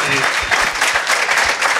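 Steady, dense applause from an audience, a loud continuous wash of many hands clapping with no distinct individual claps standing out.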